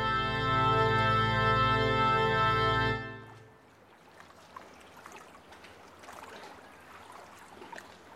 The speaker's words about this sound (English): The 3 of you find yourselves drifting along the Arful River, heading north out of Tyr. Bargemen push the boat up the river. A canopy covers you from the midday sun.